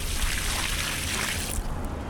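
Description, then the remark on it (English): A bucket of water is poured onto a parking lot paved with Ecocreto, a porous pavement: the water pours out in a steady, broad rush, hissing and splashing onto the surface for about a second and a half before thinning to a softer trickle. No voices. “Néstor Debuen pours a bucket of water on a parking lot made of Ecocreto.”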